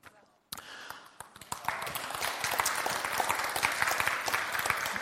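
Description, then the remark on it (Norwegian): An audience bursts into applause for the 50,000 New Testaments produced and handed out in the MC (motorcycle) community, after a brief quiet start, the clapping quickly swelling into a dense, steady patter of many hands that stays loud through to the end. “Det virkelig verdt en applaus, for det er mange av dem som har tatt imot en sånn bibel, som ikke har noen relasjon til menighet, til Jesus for øvrig.”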